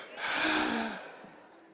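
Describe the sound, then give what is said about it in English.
A single long, breathy exhale voiced by a person imitating heavy breathing like someone on a breathing machine, swelling quickly and then fading out over about a second and a half, fairly loud. “like you on a breathing machine.”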